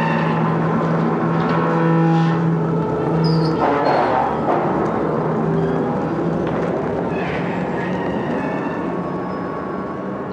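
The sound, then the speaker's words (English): The sound of Jabba's palace door opening, made by sound designer Ben Burtt: a heavy door grinds open with a loud, steady mechanical rumble and droning hum, shifting into a harsher scraping clank partway through before rolling on to the end. “So the next sound is Jabba's palace door opening.”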